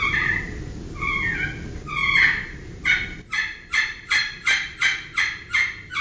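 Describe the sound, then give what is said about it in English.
A slate turkey call worked with a striker: a few drawn-out yelps, then a steady run of about eight sharp, rhythmic yelps, each breaking from a high note to a lower one. No one talks. “And that's what you're trying to do with any turkey call.”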